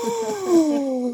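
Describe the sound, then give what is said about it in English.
A single drawn-out, exaggerated gasp voiced aloud, a breathy tone that slides slowly downward in pitch for about a second, fairly loud, with no talking around it. “And if they don't do a good enough job on the gasp, just like dub it with a sound effect from online.”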